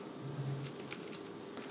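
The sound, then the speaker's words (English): Rapid, irregular clicking like fast typing on a computer keyboard, fairly quiet, over a low hum with no one speaking. “He's typing at an impressive rate right now.”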